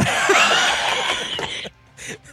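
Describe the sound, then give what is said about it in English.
A loud, harsh cough right into the microphone, distorted, followed by a brief pause and a couple of softer, breathy bursts. “I just coughed into the mic.”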